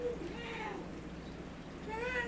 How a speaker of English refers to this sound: you're over there stroking your cat like your doctor.